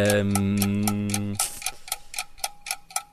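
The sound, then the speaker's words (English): A quiz countdown timer ticks steadily, about three sharp clicks per second, loud, while a contestant names Americans playing in the Premier League. A sustained humming tone sits underneath for the first second or so, then the ticks continue alone. “Clock's ticking.”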